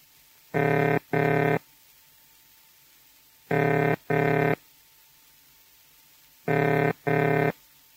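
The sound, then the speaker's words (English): A telephone ringing tone heard after dialing, meaning the number dialed is being rung: three pairs of low, buzzy burring tones, each burst about half a second, with a long silent gap after every pair. Loud and steady, no voices. “The ringing tone is a pair of low-pitched burring sounds repeated with a fairly long pause after each pair, like this.”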